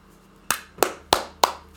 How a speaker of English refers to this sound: Yeah, I'll clap. We already had a clapping session before this started.